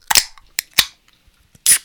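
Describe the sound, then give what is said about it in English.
A beer can snaps open with a sharp crack, followed by a couple of quick clicks and a short, bright fizzing burst as the foam sprays out over a microphone. No one speaks. “I cracked it and it got all over my microphone.”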